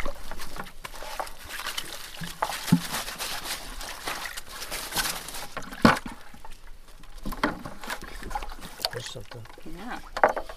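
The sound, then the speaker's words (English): The Wynantskill Creek in Troy flows steadily just before it enters the Hudson, at the site of a Department of Environmental Conservation dam removal project, with a continuous rushing, splashing wash of water, moderately loud, while faint voices and small knocks come through now and then. “followed by the sounds of the Wynantskill Creek just before it enters the Hudson”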